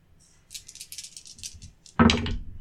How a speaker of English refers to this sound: Okay, so I will roll 3d6 to check the door for traps.